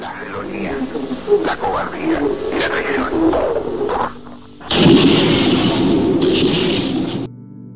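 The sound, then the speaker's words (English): A tinny, radio-quality voice speaks, then a loud explosion erupts and roars on for a couple of seconds before cutting off abruptly. The explosions were recorded in the actual radio broadcast of Salvador Allende's last address, all muffled as if heard over an old broadcast. “Those explosions were recorded in the actual radio broadcast.”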